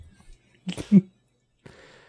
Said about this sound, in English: Slurps up. Slurps out. I love the slurp.